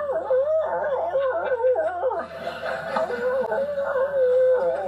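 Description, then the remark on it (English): A dog howls and whines in long, wavering, pitch-sliding tones, fairly loud, rising and falling continuously like a wolf's call, with no one speaking over it. “I see your doggy barking. He's like, I guess that's more of a wolf, but.”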